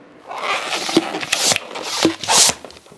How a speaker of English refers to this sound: That wheezing and squeaking isn't because I took the stairs. It's actually the sound of latex balloons being formed into a Christmas wreath.